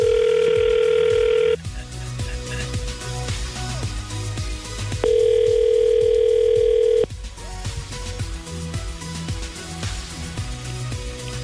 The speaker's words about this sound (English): So we'll call Lindsay now and find out what's up. Do it. The phone.